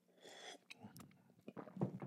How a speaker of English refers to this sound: I mean, I'm feeling it. I'm going to take a little sip of my coffee here.